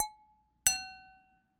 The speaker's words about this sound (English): Well, with all this tomfoolery and madness out of the way, should we cheers and jump into it? Yes, let's. I suppose we both have wine.